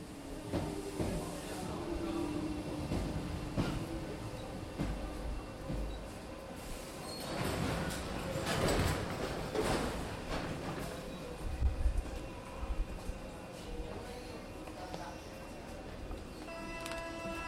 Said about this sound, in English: There's the subway. Yeah. The metro.